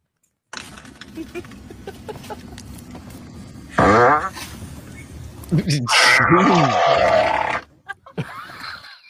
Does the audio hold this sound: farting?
yes